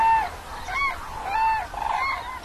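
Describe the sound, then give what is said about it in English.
Cranes at Lake Günsa, Germany, call in a series of loud, brassy trumpeting honks that overlap and repeat without pause, as if several birds are calling together. “International bird watchers can see the cranes without disturbing them.”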